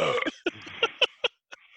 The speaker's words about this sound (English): Oh, wait, got a burp.